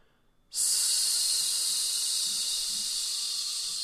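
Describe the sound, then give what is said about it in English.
In a breath control exercise, a deep breath is released on a steady, bright hiss pushed out through the teeth, beginning abruptly after a short quiet moment and holding loud and even for several seconds, tapering only slightly. “Release on a hiss.”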